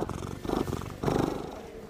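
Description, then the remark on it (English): A cat purrs, a low rumbling that pulses steadily in two swelling breaths over about two seconds, moderately loud with no voices. “He has a cat bed, and he purrs all the time.”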